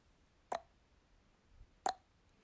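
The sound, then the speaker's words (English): Two hollow, rounded tongue clucks made with the mouth shaped into an O, with a popping, cork-like quality, separated by over a second of near silence. Each is short and moderately loud, with a resonant mid-pitched tone. “How does it sound if you make your mouth into an O?”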